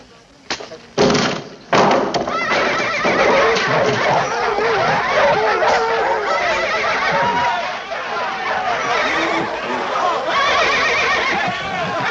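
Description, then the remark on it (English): A horse named Meditation whinnies and neighs, its calls mixed with thuds and a couple of sharp knocks at the start, while people talk over the top throughout. “That's the horse I picked out for you.”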